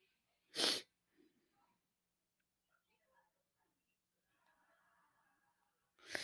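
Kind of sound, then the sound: human body sound, sneeze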